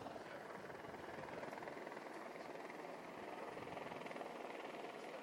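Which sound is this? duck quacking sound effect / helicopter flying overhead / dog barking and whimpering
helicopter flying overhead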